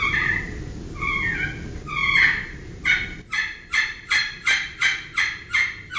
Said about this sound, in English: So the box call, because of the curve of the lid and the shape of the sideboard, high to low. And that's what you're trying to do with any turkey call.